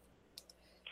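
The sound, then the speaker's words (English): A few soft, sharp clicks land at uneven intervals as a person types on a computer keyboard, tweeting out a link, with no voices over them. “You just get the real time, me typing on the computer and tweeting out the link”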